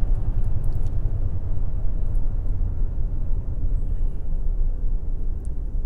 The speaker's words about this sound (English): Sorry, I'm driving. This guy's slamming on his brakes in front of me.